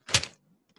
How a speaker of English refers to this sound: I actually don't have a virtual fly swatter. I was just slapping a bag of David sunflower seeds right here in front of the microphone.